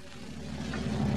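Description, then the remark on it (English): A bus engine rumbles and grows gradually louder as the bus pulls into a bus station, a steady low drone with no voices over it. “Now back in the bus station, we find Fibber McGee and Molly watching the bus pull in”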